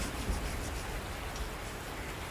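Steady rain falls in a continuous, even hiss that holds at a constant moderate level throughout, with no voices and no pauses.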